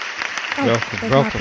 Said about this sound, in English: You feel special? Yes. Good. I'm glad that you feel special. Why do you feel special? Because I just got an applause.